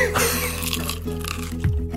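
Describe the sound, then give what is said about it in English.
Crunchy chicken with Crack Fox handcrafted hot sauce, made in Byron Bay, being bitten and chewed: a few sharp, crackly crunches spaced irregularly over about two seconds, with a low steady hum underneath and no clear talking. “That was a good crunch.”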